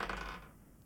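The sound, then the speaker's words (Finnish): A die is rolled and clatters briefly across a hard tabletop, a quick bright rattle of small impacts that settles within a second, fairly quiet, with no voices. “Hei, vedetäänkö tähän väliin noppa?”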